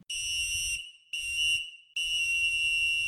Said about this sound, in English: They blew the whistle. We're jumping back in, and here's best scenes.